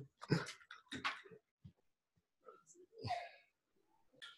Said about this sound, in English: Hold on just 1 second. My dogs need to go outside. 1 second.